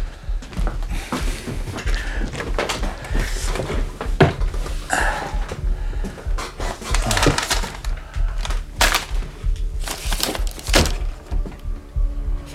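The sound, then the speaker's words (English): A busy run of heavy thuds and wooden knocks, like a door being shut amid shuffling and clattering, with faint voices in the background. “Close the door, though, when you come in.”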